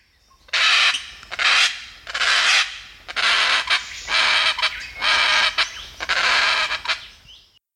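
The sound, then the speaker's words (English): A Dracula parrot gives a series of about seven harsh, raspy screams, each lasting roughly half a second with brief gaps, loud with no other sounds. “screaming call that I think anybody familiar with parrots would instantly recognize as the noise of a parrot”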